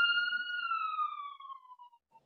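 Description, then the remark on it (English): A siren wails in a long, steady tone that slowly droops in pitch and fades away over a couple of seconds, with no voices present. “You said problems, and then the sirens came.”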